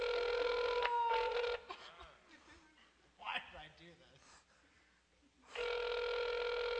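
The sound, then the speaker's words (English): A phone ringback tone buzzes loudly at the start, pauses while a person speaks briefly, then rings again at the end, steady and unanswered. “Nobody answers phones these days.”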